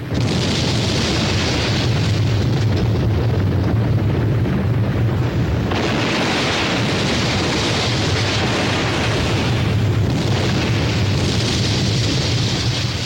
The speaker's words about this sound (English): Instead of wrecking crews, explosions, planned very carefully, are being used increasingly to help renovate American cities by clearing away old and abandoned buildings.